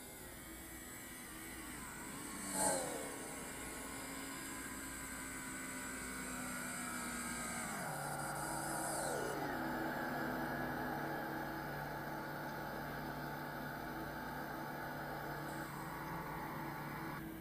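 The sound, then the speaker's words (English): A stock car engine drones steadily on a race track throughout, its pitch stepping down a couple of times as it shifts, with a brief sharp burst near the start and no voices. “And we do have a stock car on the track.”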